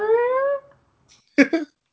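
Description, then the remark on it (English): A puppy whines in one drawn-out, high, slightly rising tone for about half a second, followed after a pause by two quick, sharp little yips. “Yeah, oh, he's a good little puppy.”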